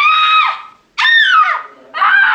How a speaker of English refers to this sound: When Jack wanders past his office door, the director makes each of his girls scream one time, but Jack is unimpressed.